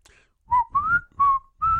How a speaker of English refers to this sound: Can you whistle?